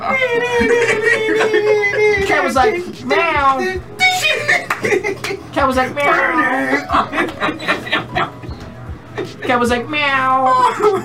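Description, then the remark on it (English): A person vocally imitates a cat, letting out a long, loud run of exaggerated meows one after another, with bits of chuckling mixed in. “Cat was like meow, meow, meow, meow, meow, meow, meow, meow, meow.”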